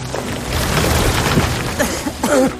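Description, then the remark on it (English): A heavy crash with a low boom as a flaming branch falls to the ground in a burning forest, rising out of a steady roar of crackling fire, and a few brief tonal cries follow near the end. “Then he and the toy maker ran from the forest, just as a flaming branch crashed to the ground.”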